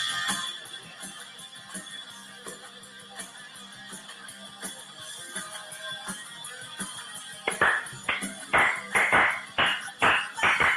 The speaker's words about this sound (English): You can hear the claps in the background too, can't you? Yeah. I don't know. I didn't really hear it. Yeah. There's some in there.